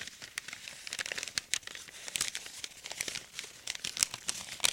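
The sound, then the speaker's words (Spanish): A page torn from a book is crumpled continuously to imitate a crackling fire, an old radio sound-effect trick: a dense run of crisp crackles and sharp pops, fairly quiet and steady with no voices over it. “Le voy a demostrar cómo hacían, por ejemplo, y aquí voy a arrancar una página, mis queridos amigos. Es así como se hacía, por ejemplo, se imitaba el fuego.”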